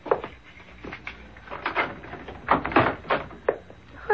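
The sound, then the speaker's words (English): A complicated security lock on a door being worked open with a string of metallic clicks, clacks and thunks over several seconds, moderately loud, followed by the door opening. “Well, you certainly have a complicated lock on that door.”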